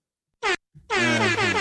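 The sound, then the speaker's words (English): A loud, blaring buzzer horn sounds twice: a short blast, a brief gap, then a longer sustained blare with rich harmonic tone, the buzzer marking the end of a quarter. “I got the buzzer, so we good.”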